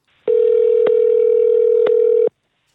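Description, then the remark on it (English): A steady telephone dial tone hums for about two seconds, loud, with a couple of faint clicks partway through before it cuts off abruptly, as a phone call is placed to Toronto. “All right, let's get Blair on the phone in Toronto.”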